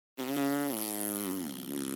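A long, loud cartoonish fart sound effect, a buzzy, rasping blast that holds for nearly two seconds with its pitch sagging slightly toward the end. No voices accompany it.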